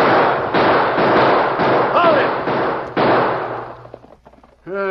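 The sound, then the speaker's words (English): Men fire on riders escaping on horses in the dark. A volley of loud, sharp gunshots cracks out in quick, irregular succession, each blast ringing into the next, before the firing dies away and a man briefly speaks. “Get up and fire. Let them have it.”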